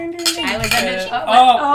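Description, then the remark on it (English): Glasses clink together in a toast celebrating that everyone won, several bright, ringing chinks overlapping over about two seconds, fairly loud, with a sustained high shimmer as the glass rings out. “let's drink because yeah. we all won. Yes. Cheers.”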